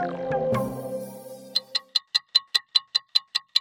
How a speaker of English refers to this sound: Hear that? That's the clock counting down to the Brisbane 2032 Olympic and Paralympic Games, which, if you can believe it, are only 10 years away.